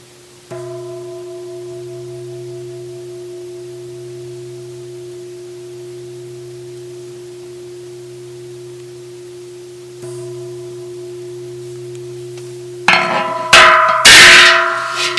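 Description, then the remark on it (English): A meditation bell is struck and rings out in a long, steady, humming tone, struck again about ten seconds later, before a burst of loud clattering noise near the end. No one speaks. “notice if the experience of the bell is felt as pleasant, unpleasant, or neutral.”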